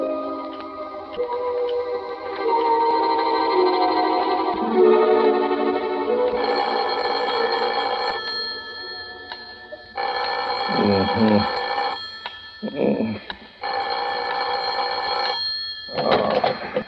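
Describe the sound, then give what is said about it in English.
A telephone bell rings in a warden's office in repeated bursts, loud, with a metallic trilling tone, separated by brief pauses while faint voices murmur in the background. “You better phone the warden to make sure, though, Governor.”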